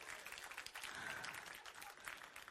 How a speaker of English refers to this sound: Come on, if you're going to clap, clap.